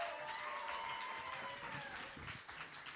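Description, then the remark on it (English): A crowd applauds steadily at the Kalamazoo Poetry Slam as poets' scores are announced, the dense clatter of many hands holding for a few seconds before easing slightly, with a few high whoops or whistles riding over it. “Give everybody a big round of applause, guys.”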